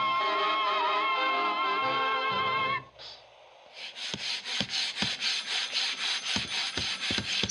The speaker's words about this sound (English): Stop for a moment. Excuse me, sir. Stop sanding that wood.